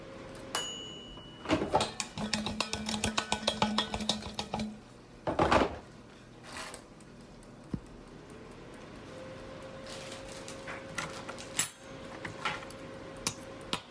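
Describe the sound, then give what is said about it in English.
Irregular knife chops on a cutting board as a zucchini is chopped in a kitchen, fairly loud, mixed with clattering kitchenware, with a steady appliance hum running underneath while potatoes cook in an air fryer, and no one talking. “I'm making potatoes in the air fryer now. And I'm chopping a zucchini, so I think probably just like veggies and some protein.”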